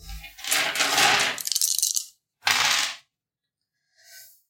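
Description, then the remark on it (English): Three plastic eight-sided dice clatter and rattle across a hard tabletop in a loud burst, followed by a second shorter tumble and a faint final click, with no talking. “please help me find some d8s in this horrible pile of dice.”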